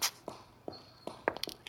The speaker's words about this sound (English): There are footsteps coming quickly behind me. Someone is following me.